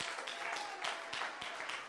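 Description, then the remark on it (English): Dense, sustained applause from a large crowd giving a strong hand clap offering unto the Lord, many hands clapping together in a steady, energetic roar with no voices standing out. “A strong hand clap offering unto the Lord.”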